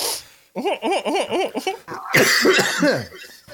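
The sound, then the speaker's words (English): A run of loud coughs in quick succession, hoarse and partly voiced, followed by a rougher, breathier coughing fit before it trails off. “Just an hour podcast of us coughing.”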